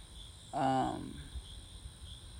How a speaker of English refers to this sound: I wonder if y'all can hear the crickets